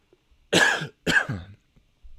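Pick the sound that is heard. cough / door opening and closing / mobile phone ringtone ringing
cough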